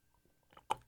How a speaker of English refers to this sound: I'm taking a sip of my water. Hold on.